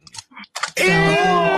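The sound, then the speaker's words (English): A few quick, crisp crunching bites of crackers, then a loud, sustained, drawn-out vocal tone abruptly takes over and covers everything else. “And you're just eating, you're just gonna eat crackers. That's what you're just doing. Crackers and M&Ms.”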